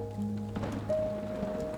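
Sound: rain on a window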